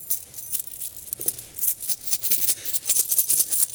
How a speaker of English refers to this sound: There's 30 coins in here.